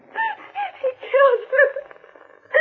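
A woman sobs and wails in uneven, breathy bursts, her voice rising and falling in pitch with short gasping pauses between cries.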